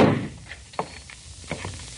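A door is shoved open with a dull thunk, followed moments later by a second knocking bump, both fairly soft against a quiet background. No one speaks.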